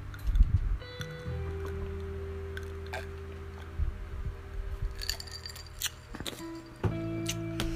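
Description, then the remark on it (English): Ice cubes clink and tick against a glass in scattered sharp taps while someone takes quiet sips of ice water, over a steady low hum with no talking. “Hold on, gotta sip some water.”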